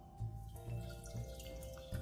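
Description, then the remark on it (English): Melted butter, just taken off the heat, is poured into a large mixing bowl: a steady stream of liquid with soft dribbling splashes, running continuously for about two seconds with no talking. “And so we're going to pour it into a bowl, a large mixing bowl.”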